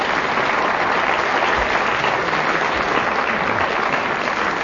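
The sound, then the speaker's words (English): A studio audience claps steadily, a dense, even wash of applause that holds at the same loud level for several seconds, with no voices breaking through. “And the reason that I asked for that unsolicited applause is that they've both drawn level.”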